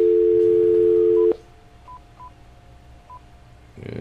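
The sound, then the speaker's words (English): A steady phone dial tone cuts off, followed by four short, evenly pitched keypad beeps spaced irregularly over a few seconds against a quiet background, with no one speaking; dialing an old-school phone to call a son in Pensacola. “Let's call my son, see if I can get a hold of him.”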